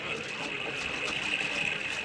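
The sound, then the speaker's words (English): A steady, continuous rush of falling water from a waterfall, a dense hiss that stays loud and unbroken for the whole moment, with no voices standing out above it. “Follow me with them wagons into the riverbed and under the waterfall.”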